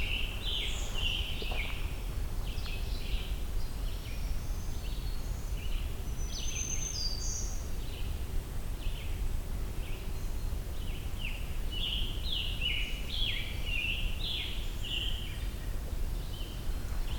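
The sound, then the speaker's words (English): Black-throated green warbler songs, two different songs: high, buzzy, wheezy phrases repeat throughout, the two patterns trading off over a steady low outdoor rumble, with no one talking. “Black-throated green warbler and another one. Just two different songs.”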